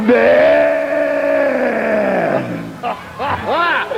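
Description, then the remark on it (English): A man's voice imitates a cow bawling in pain as it is branded with a hot iron: one long, loud, wavering low moan lasting over two seconds, trailing into a few shorter strained groans and whoops. “What do they sound like when you brand them, man? When you put that hot fire on them?”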